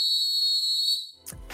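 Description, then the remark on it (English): A single loud, shrill whistle blast, blown as a sound cue, holds steady for about a second, then cuts off into a brief rustling thump at the end. “Do we have any blow the whistles?”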